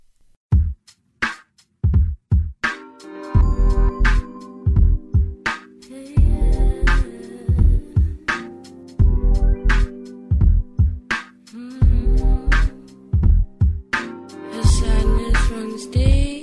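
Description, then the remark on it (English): A requested song's intro opens with sparse, punchy drum hits, then a full band crashes in around the midpoint with loud, driving drums and distorted guitars, with no singing yet. “We're going to close out the show today with another song request from our zine guests.”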